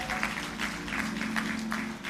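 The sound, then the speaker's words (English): An audience applauds for the pastor's wife, a steady, dense wash of many hands clapping at once with a faint hum underneath, sustained and moderately loud throughout. “Can we give it up for the first lady of this house?”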